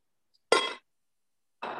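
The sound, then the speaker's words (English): A glass of water clinks sharply as someone takes a sip, a bright ringing tap, followed about a second later by a second, softer clink with a short resonant decay. “I am to actually drinking that water kyunki mujhe peena padega nahi to bol nahi paunga.”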